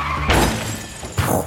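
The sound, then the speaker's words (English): A car that missed a turn and drove straight ahead crashes into a ditch with a loud impact, followed by a wash of crunching and shattering debris and a second heavy jolt about a second later. “in a ditch”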